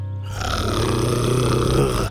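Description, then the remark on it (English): A low, rumbling growl from Buck rises quickly and holds steady for about two seconds, loud and throaty with a gritty, vibrating texture throughout. “Buck growled louder.”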